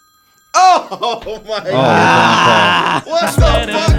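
A phone ringtone plays loudly, a warbling, tonal electronic melody that swells into a sustained stretch before breaking off into a few short bursts.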